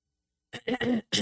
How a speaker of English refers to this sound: Hello. That's clearing your throat.